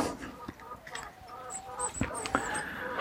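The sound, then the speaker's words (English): Chickens cluck busily as they are given their breakfast, a scatter of short overlapping calls and soft bursts with a few sharper clucks standing out, all under a constant outdoor hiss. “Let's get the chickens their breakfast.”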